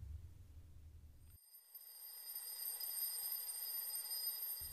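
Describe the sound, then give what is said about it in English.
A bright alarm clock chime rings out at the start of a new day, with layered high metallic tones that sustain and swell in loudness, following a brief low rumble at the start. No voices. “Molly's alarm chimed eagerly, alerting her that the new day had begun”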